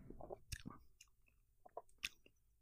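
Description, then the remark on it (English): Someone takes a first sip of a peach Crush soda: a few wet mouth clicks and short slurping bursts, then a brief swallow-like pop, with no talking. “The sip.”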